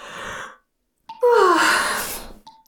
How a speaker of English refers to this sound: Why am I yawning so much? Because you want to go to sleep.